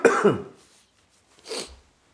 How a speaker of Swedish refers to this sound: Förlåt, men jag måste bara hosta lite. Ingen farlig, bara hosta.